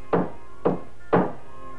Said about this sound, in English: Nailing a notice to the door of the church was not unusual, for this was the customary place to post announcements of both university and public events.